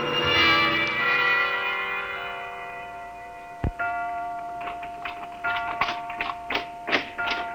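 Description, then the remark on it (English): A clock chime rings out in one rich, bell-like strike that slowly fades, followed by a sharp thump and then a steady, light ticking. No voices are heard. “Clock.”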